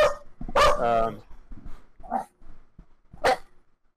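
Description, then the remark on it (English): A pit bull barks several times at irregular intervals, loud, with some barks drawn out into whining, rough yelps, while quieter voices murmur between them. “the barking is on our end, just to let you know. That's Manny's pit bull”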